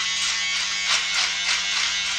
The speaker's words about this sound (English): Going to see the people that I think are my relatives. That's why I'm shaving.